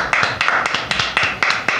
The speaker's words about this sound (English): Clap, Bruce. Best one of 2023 so far.